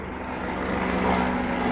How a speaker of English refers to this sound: And I just want to take a pause and say, can you even hear this story? There's a serious helicopter.